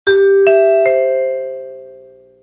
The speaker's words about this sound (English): It served as a form of network ID and plugged directly into homes throughout North America. We knew that once those chimes sounded, something promising, something entertaining and trustworthy was about to air on our television sets.